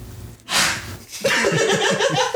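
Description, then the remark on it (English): A single sharp, breathy sneeze bursts out, followed by a second of quiet and then ongoing voiced, laugh-like vocal sounds. “Bless you. Bless you.”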